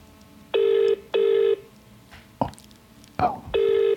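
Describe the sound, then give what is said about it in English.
A WhatsApp call ringback tone repeats in steady bursts, each about half a second long, heard over a phone speakerphone, with a couple of short knocks and rustles between the rings. “Is it ringing? No, it's because you're on WhatsApp.”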